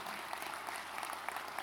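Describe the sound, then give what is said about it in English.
An audience claps together in a steady, dense patter of many hands, the sharp crackly claps blending into a fairly soft, even wash with no voices over it. “Even you're clapping, you are not using it.”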